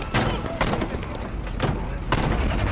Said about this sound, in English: When all of a sudden, shots tore through their real bedroom. The gunfire lasted a while.